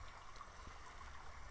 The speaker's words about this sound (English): Tonight we are joined by my dog and the sounds of an Oregon river.